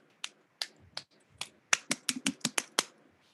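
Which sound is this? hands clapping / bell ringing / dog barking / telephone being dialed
hands clapping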